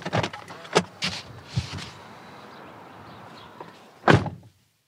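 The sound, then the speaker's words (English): Several knocks on the front door of a house on a cul-de-sac on a warm evening come in an uneven burst, followed by a quiet stretch of steady background noise and then one louder thump near the end. No one speaks. “So I'm going to go in and I'm going to knock on the door and I'm going to see if the foster mother wants to talk to me.”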